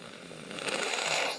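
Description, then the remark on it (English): A pig named Nacho snorting in a rough, raspy burst that swells and holds for about a second, harsh and noisy like a ripping snort, with no talking over it. “He is ripping snorts.”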